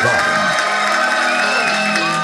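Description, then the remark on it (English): A loud, steady wash of crowd cheering and applause, with whoops and shouts rising over dense clapping, sustained evenly for a couple of seconds with no one speaking; the audience welcoming the host at the start of a live show. “And now, give a warm round of applause to my friend and yours,”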